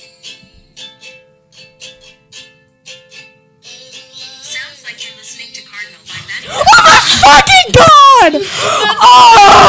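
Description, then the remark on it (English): After several seconds of quiet, soft rhythmic sound, loud, excited high-pitched screaming suddenly erupts right up against the microphone, wavering and overpowering until the end. “Whoa, cool it on the you're gonna scream, back away please.”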